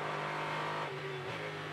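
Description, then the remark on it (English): The engine of the number 14 Pro Vassar Sullivan GTD Lexus race car, driven by Jack Hawksworth in an IMSA race, drones steadily with a sustained, harmonic tone that dips and shifts pitch slightly partway through, as if revving or changing gear. No one speaks. “The engine you hear in the background is that of the number 14 Jack Hawksworth driven Pro Vassar Sullivan GTD Lexus, trying to chase down Dirk Müller, who's ahead of him, not in his class.”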